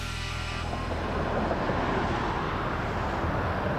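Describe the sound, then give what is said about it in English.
Steady roar of road traffic mixed with gusting wind on the Huey P. Long Bridge over the Mississippi River, a dense low rumble that fills the whole stretch with no pauses and no voices. “The Huey P. Long Bridge over the Mississippi River.”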